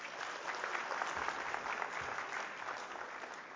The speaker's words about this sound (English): If we could give him a round of applause.